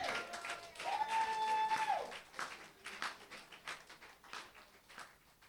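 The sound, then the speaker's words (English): An audience claps unto Jesus in a steady, dense wash of applause lasting several seconds, with a sustained high-pitched tone, like a shout or whistle, rising over it briefly near the start. “It's a good place to clap unto Jesus.”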